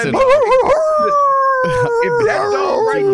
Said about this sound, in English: That's not a dog. That's a wolf, a dude. That's a wolf.